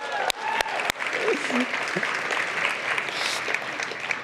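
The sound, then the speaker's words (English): A church audience applauds steadily for several seconds, clapping for the pipe and drape, a dense wash of many hands clapping at once, with a few sharper claps at the start and scattered voices mixed in. “I feel like we just clapped for pipe and drape, but it's all right.”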